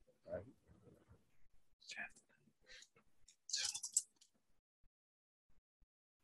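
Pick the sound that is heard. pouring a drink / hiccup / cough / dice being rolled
dice being rolled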